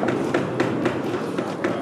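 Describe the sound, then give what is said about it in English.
A quick, steady series of about seven knocks on a hard surface, evenly spaced and fairly loud, set against a constant busy background hum with no clear voices. “knock if you're with me.”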